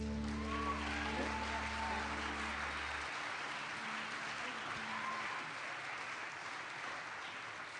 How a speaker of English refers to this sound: Thank you for clapping.